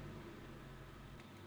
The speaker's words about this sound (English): So that's my car. I'm just starting my car, guys.